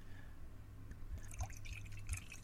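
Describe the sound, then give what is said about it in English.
A Welch's Sparkling Pina Colada Mocktail is poured into a glass, a soft splashing trickle with a fizzy crackle that starts after a moment and continues to the end, fairly quiet over a low steady hum. “Then we're going to pour it into this glass.”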